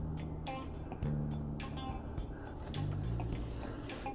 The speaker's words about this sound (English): Now, some guy just came in, parked his damn truck next to me, take up two spots. That's typical.